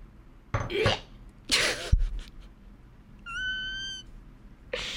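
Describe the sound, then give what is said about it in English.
A cat lets out a couple of short, breathy meows, then a brief steady high-pitched squeal follows, with another quick cry at the very end. “That's how my little meows.”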